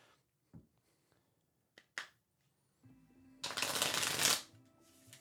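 A deck of tarot cards being shuffled: a few soft taps and flicks, then a loud, dense riffling burst of cards for about a second, trailing off quietly. No one speaks.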